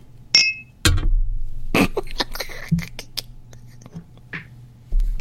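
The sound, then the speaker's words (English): A single bright, ringing clink of glasses raised in a toast at the start, followed by scattered knocks, taps and rustling over a low steady hum, with faint whispery breaths in between. “This is you and me cheersing.”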